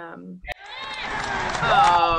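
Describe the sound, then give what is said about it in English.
A short voiced intake leads into one sharp, explosive sneeze, followed by a longer stretch of busy, overlapping voices that grows slightly louder toward the end. “Bless you.”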